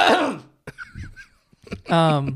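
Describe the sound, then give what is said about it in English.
A few harsh, throaty, phlegmy coughs from someone who has had a cough for five days, with throat-clearing bursts, fairly loud, breaking up with short pauses and ending in a strained, voiced groan. “Dude, 5 days for a cough is a long time with phlegm and shit.”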